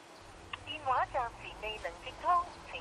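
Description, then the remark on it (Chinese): Telephone dialing beeps and call tones, short electronic pips alongside a thin, phone-filtered Cantonese recorded voice saying the call cannot be connected, as a call to grandfather fails to go through, at moderate volume over a low background hum. “电话暂时 未能接通，再打多次先。”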